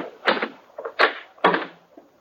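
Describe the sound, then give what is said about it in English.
The door of a rooming house being opened: three sharp clicks of a latch or handle, each followed by a short rattling, scraping burst, with a faint knock at the end. No voices. “While you're opening the door, you ain't got a thing to worry about.”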